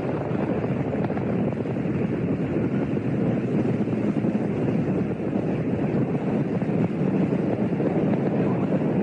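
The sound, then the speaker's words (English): A continuous, powerful roar of Space Shuttle Challenger's five rocket engines at launch in Florida on a very cold, crystal-clear day, dense and rumbling, holding steady at high volume throughout without pause, with no voices over it. “Challenger seems to shake herself free of the ice and goes. All 5 rocket engines burning well.”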